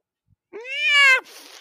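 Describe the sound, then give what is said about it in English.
A single drawn-out meow from a pet cat named Cuckoo, fairly loud, rising slightly then cutting off, followed by a brief soft hiss of background noise. “Did your cat just talk about my dick?”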